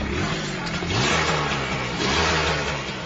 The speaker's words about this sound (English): When I came to Lagos, I became a motorcycle rider. This is my motorcycle.